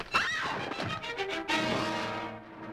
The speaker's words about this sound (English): It's even the same music and almost the same scream. Not to be overly morbid here, but here's Lena's death. And here's Martha's.